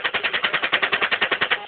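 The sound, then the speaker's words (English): A rapid, steady burst of automatic gunfire: about sixteen evenly spaced shots in under two seconds, loud and slightly muffled, with no voices. “All right, firing.”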